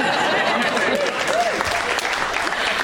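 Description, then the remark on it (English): A crowd applauds steadily, dense clapping at a fairly loud, even level, with a few faint voices and whoops rising briefly above it. “Don't applaud me, that feels very piteous.”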